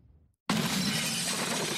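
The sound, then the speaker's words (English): After a brief hush, a pickup truck driven by thieves after the ATM machine slams into a grocery store with a sudden, loud crash, and glass shatters in a dense, sustained burst of breaking noise that fills the rest of the moment. “A pickup truck smashes into a grocery store.”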